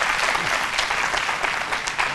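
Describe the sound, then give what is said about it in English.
An audience claps steadily for three women, a dense, continuous wash of many hands applauding at once, fairly loud with no pauses. “And y'all give them three ladies a big hand clap of praise for the amazing job that they did.”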